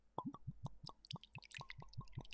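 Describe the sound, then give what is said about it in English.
Whiskey glugs out of a bottle into a glass in a quick, steady run of gurgling plops, fairly quiet, with no voices. “So sit back, relax, open that bottle, pour some in your glass, and let's get ready for the show.”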